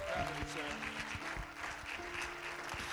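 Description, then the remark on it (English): A church audience applauds to welcome a visiting preacher at an evening district service. Many hands clap in a dense, steady wash for the full three seconds, with sustained low musical notes held underneath. “Give him a good hand in Jesus' name.”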